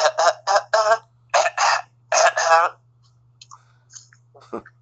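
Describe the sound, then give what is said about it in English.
A run of short, throaty coughs comes in quick clusters, loud, followed by a quieter stretch of faint small noises, all over a steady low hum. “I love that cough sequence.”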